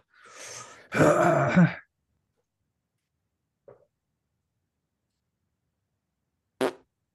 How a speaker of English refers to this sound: I think I have to fart, but it could be a shit. Dude, I mean, shit in the mic. I'm in a hotel room.